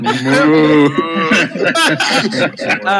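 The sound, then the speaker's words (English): A person loudly imitates a cow moo: a long low lowing note, then a wavering, bellowing continuation lasting about three seconds. “maybe you can pick up one of those, like, the cow goes.”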